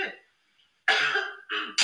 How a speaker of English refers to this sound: starts coughing directly into my mouth. Oh my god, I cannot breathe. Did you just cough? There was something in my throat.